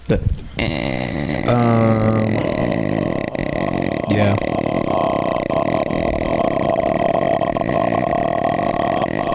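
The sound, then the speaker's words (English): A voice makes a long, loud, rattling throat croak imitating a creaking door, with grinding pulses that rise and fall over several seconds and carry on steadily without any words. “It sounds like a door creaking.”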